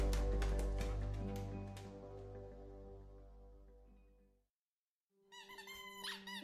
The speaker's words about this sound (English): Look, he doesn't make any noise. Paula gestured towards Mixon as the hound chewed on a ball with what Gerald assumed was the loudest squeaking mechanism in current production. He's making a ton of noise. I'm going to be hearing that squeak